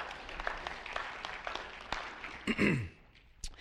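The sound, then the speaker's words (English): A group claps in a steady, scattered patter for a couple of seconds, fairly soft, then a single voice lets out a brief downward-gliding sound as the clapping fades. “Let's give a round of applause to our folks.”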